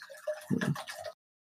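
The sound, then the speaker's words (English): Water drips and splashes in a brief watery burst of about a second, with a heavier, deeper splash midway, then the sound stops abruptly. No one speaks. “That's water, baby.”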